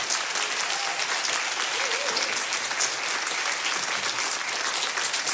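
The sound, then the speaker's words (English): Steady applause from an audience giving the pastors a round of applause fills the whole stretch, a dense crackle of many hands clapping at an even loudness with no voices breaking through. “Can we just like give them a round of applause?”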